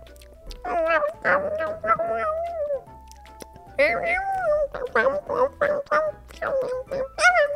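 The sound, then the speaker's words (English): A voice imitates a porcupine with squeaky, whiny chatters and grunts in quick, uneven bursts, two stretches of fairly loud noises separated by a brief pause. “Can you do a porcupine?”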